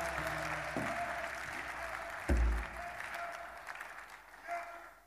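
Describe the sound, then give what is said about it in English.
An audience claps their hands in praise in a steady, dense round of applause lasting several seconds, with a low thump partway through and the clapping gradually thinning toward the end. “Come and clap your hands and praise him.”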